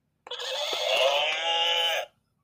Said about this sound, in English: That was the horse.